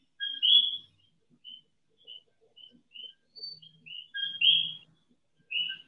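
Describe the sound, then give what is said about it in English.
Coqui frogs hidden in a garden call at night: short, high, whistled two-note chirps that rise in pitch, repeated irregularly and overlapping from several frogs, with faint low rustling underneath. “Hidden in the garden live the coqui frogs.”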